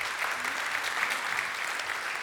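An audience claps steadily for a food bank volunteer, a dense, even wash of many hands with no pauses or individual standouts, holding the same strong level throughout.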